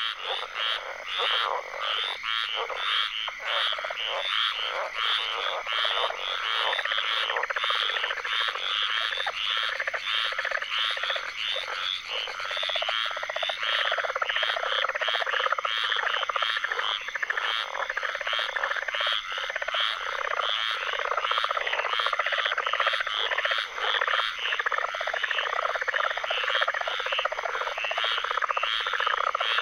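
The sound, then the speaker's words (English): A dense chorus of tree frogs in a swamp in Apalachicola, Florida, calls continuously, countless overlapping trills and croaks forming a loud, steady wall of sound with rapid pulsing rhythms throughout. “Lang Elliott and Ted Mack captured this tree frog serenade in Apalachicola, Florida, for their Voices of the Swamp CD.”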